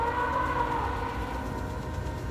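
A train rumbles past, a loud, steady low roar with sustained whining, horn-like tones riding on top, continuous for the whole moment with no voices.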